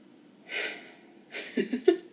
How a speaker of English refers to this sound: Let's take a breather. Let's take a breath. Drink some water.